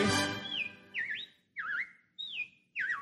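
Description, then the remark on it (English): Robins chirping in a string of about five bright, warbling whistled phrases, each short and evenly spaced with brief pauses between, clear with no talking. “Well, the robins are back. That's a sure sign of spring.”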